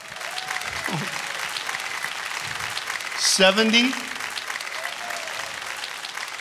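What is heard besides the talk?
audience clapping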